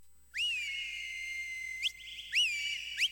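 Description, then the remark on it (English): A clear, sustained whistled melody in a metal track, whistling for a horse, with sliding pitch bends, holding long tones, then a brief rising swoop and a second phrase near the end, loud with no voices. “How is he whistling if he's headless?”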